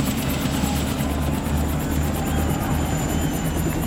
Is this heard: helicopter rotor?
yes